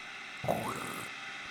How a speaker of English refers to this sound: Air conditioner, that's not bad. An industrial air conditioner.